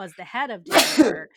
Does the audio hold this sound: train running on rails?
no